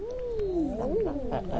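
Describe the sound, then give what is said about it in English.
Eider ducks, recorded by the BBC, giving low, moaning coos, a drawn-out wavering call that rises and falls in pitch, overlapped by a few shorter hooting calls, with no talking. “But one of the things they do right is record bird sounds, like the eider duck.”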